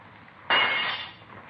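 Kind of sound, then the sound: impact, window glass being smashed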